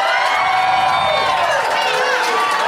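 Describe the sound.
A live audience cheers and whoops loudly, many voices blending into a sustained roar with applause mixed in, filling the whole moment.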